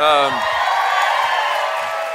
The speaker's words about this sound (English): Tommy got more applause than the 1%ers.